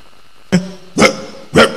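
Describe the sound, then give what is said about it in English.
A person imitates a dog, letting out three loud, sharp barks spaced roughly half a second apart, each a short harmonic burst, with no talking between them. “It doesn't mean I'm a dog.”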